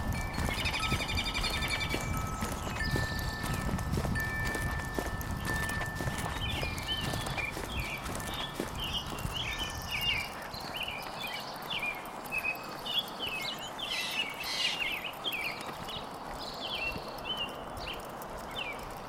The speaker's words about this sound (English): Seems to be a pretty good little combo down here by the Oracle. I figured you'd rather listen to the birds than listen to my stupid feet.